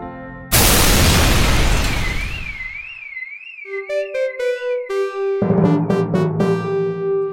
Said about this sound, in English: Series of explosions on Export Street have closed down traffic for 3.5 hours tonight.